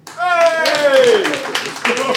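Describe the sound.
An audience at the Phoenix bursts into applause to vote for one side of a debate: a dense wash of clapping that starts abruptly and carries on steadily, with a loud sustained voice whooping over the start.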